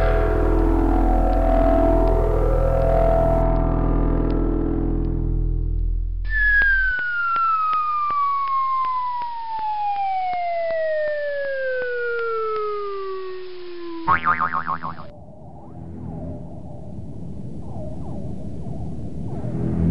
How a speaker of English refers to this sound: Wait, we have inadvertently picked up the wrong specimen. We have picked up the 20-minute talker. Put him back. Engaging reverse tractor beam.